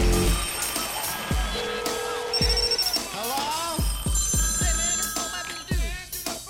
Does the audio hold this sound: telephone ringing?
yes